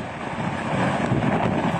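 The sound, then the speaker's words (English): Fierce Hurricane Ida wind, with gusts up to almost 90 miles an hour and sustained winds over 60, roars and buffets a Fox reporter's microphone in a loud, continuous rushing blast with slight surges, overwhelming, with no voices audible. “We've had gusts up to almost 90 miles an hour, sustained over 60.”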